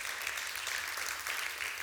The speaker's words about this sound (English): Come on, let's give him a good round of applause this morning. He's so good.